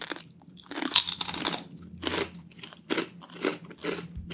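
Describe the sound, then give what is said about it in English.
Loud crunching of sea salt and vinegar kettle-style potato chips, a series of sharp brittle bursts in an uneven chewing rhythm with brief pauses between bites, no talking. “Oh, that's a nice crunch.”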